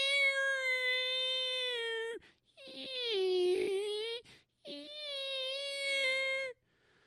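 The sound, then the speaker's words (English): Whale song: three long, drawn-out tonal moans, each about two seconds, rich in harmonics. The middle call sinks lower and wavers before rising, with brief silences between calls. “How many of you have heard a whale? You know, the whale song, the...”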